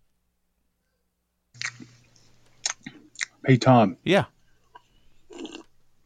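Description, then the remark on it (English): Wet chewing and slurping noises of someone eating come in irregular bursts, with a couple of short spoken words breaking in partway through. “Slurping. Mm-hmm. This is real eating, too, I can tell.”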